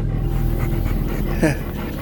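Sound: dogs panting and whimpering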